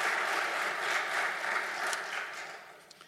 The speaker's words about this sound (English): We do give them a round of applause and praise God for what they did.